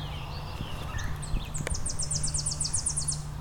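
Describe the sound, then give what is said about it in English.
A Tennessee warbler sings a series of thin, high, rapid notes that quicken into a dry trill, with a few scattered chips before it, over a steady low rumble. “So I've got a Tennessee warbler in front of me.”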